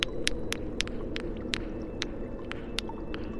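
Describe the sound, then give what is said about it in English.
Very distant insectile clicking like mandibles from the far end of a tunnel: a dozen or so sharp, dry clicks at an irregular pace, sitting over a steady low rumbling hum with no voices. “I mean, it sounded like mandibles to me. Yes, an insectile clicking.”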